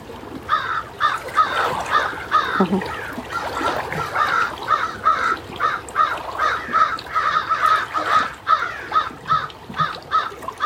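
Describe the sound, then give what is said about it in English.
Crows caw repeatedly and continuously, a family of adults and young birds calling in overlapping bursts as the young venture out on their own, with a faint trickle of water in the background. “Some news today, the crow family.”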